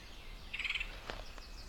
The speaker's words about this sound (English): I'm going to get to that woodpecker.